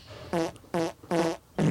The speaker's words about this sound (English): And can I get a couple New Year's farts